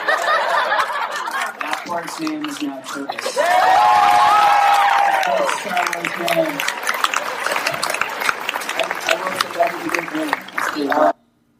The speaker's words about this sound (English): You can't hardly hear it at the very end because the crowd is like going flipping nuts at the end here.